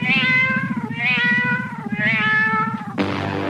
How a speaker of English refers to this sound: Yes, it's a cat from the game.